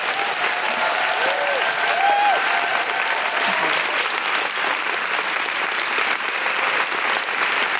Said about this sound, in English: Let's give all of our panel a big round of applause.